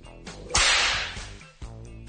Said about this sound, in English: The best thing about a whip is the sound of the crack. That's what gets you the respect.